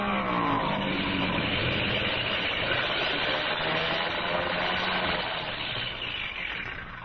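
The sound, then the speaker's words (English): A plane engine that has been acting up roars loud for several seconds, running rough and sputtering as the plane comes in fast to land, with a steady droning rumble that eases slightly at the end. No one speaks. “Well, we'll know in a minute because he's coming in fast.”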